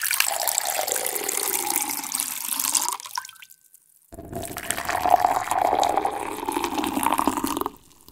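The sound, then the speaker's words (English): Cold water is poured steadily for a few seconds as a drink, then after a brief silence hot water is poured in a second continuous stream. No voices. “Can you tell the temperature of these two drinks just based on the sound they make while they're being poured?”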